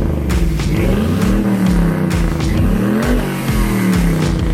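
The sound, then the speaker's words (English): The turbocharged LS V8 engine of a Chevrolet Silverado pickup truck, running without exhaust, revs hard, its deep roar rising and falling in pitch through several surges over a few seconds, loud and continuous with no voices. “And he recently sent in a sound of his Chevy Silverado with the turbo LS V8 doing a burnout. And that now is the same vehicle.”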